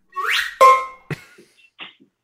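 A slide whistle, used as a comedy slipping effect, swoops upward in pitch, then holds a bright, steady tone before breaking off, followed by a short thump and a few faint little clicks.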